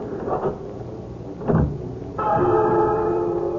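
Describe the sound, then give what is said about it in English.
A house key rattles and clicks in the lock of a deserted house's door with two quick metallic clunks, then the door swings open with a long, steady creak, fairly loud. “Yes, but it's locked, Pauline. We can't go in there. Open. Hurry. All I have is the key to our house. All right, I'll try.”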